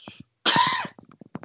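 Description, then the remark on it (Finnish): A harsh cough burst lasting about half a second, followed by a few shorter throaty catches and small coughs trailing off, with no talking. “Pahoittelut yskimisestä tähän loppuun.”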